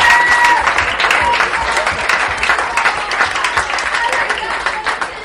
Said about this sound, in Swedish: Men att en applåd tillsammans för nummer 27 i AIK, Ivan Turina, som bor det här året.